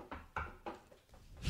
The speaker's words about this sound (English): I've knock on wood.